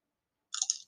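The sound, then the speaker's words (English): A brief, close-up crunch of someone chewing crisp food, a short burst of crackly bites right at the microphone after a moment of silence. “Yeah, I get that crunch in the mic.”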